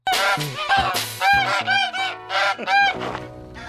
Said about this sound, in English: they use a real bird. and I wonder how much danger this bird was in, because there's a lot of movement. So this bird comes into the car, pecks around, causes a lot of frantic motion, and then flies off again.